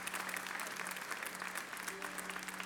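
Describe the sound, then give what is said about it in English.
A crowd applauds mothers on Mother's Day, many hands clapping in a dense, continuous patter that holds an even level throughout, with no voices rising above it. “Every man, child today, would you help me clap and appreciate our blessed, wonderful mothers today?”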